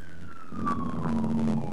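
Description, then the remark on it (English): Fire truck sirens wail as the trucks drive past a house, the steady tone sliding gradually lower in pitch over a low engine rumble, with no voices. “Fire trucks just drove past my house, sorry.”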